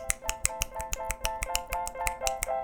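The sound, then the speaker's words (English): People clap in a quick, steady rhythm, roughly fifteen sharp, crisp claps in under three seconds, with a faint sustained tone humming underneath and no voices. “We'll clap for fun.”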